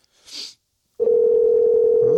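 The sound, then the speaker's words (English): A brief soft hiss, then a steady, loud electronic phone ringing tone that holds unbroken to the end, like an outgoing call waiting for someone to pick up. “Oh, not answering his phone.”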